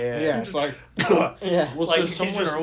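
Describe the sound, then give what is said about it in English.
A person imitates a sick man's muffled cough into a hand: one short, sharp burst in the middle, surrounded by throaty voiced sounds and throat clearing, fairly loud. “He was coughing, and he always coughs just right, like, through his hand.”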